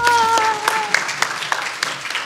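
An audience breaks into steady applause welcoming a speaker to a lecture on scientific sessions for the home breeder and live feeds production, a dense crackle of many hands clapping with a few sharper claps standing out. A brief tonal, voice-like sound fades at the start.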